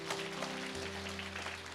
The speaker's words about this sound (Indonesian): Boleh tepuk tangan bagi Tuhan, saudara.